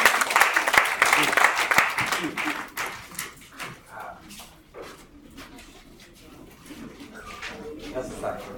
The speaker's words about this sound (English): Let me get another team. The company team in that region. Just clap for them.